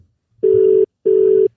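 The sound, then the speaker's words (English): A phone dialing tone sounds twice, two steady, even-pitched buzzing beeps of about half a second each separated by a short pause, loud and clear with no voices. “I think instead of us calling people, I think we need people to call in.”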